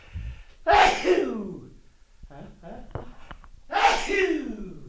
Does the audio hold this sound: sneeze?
yes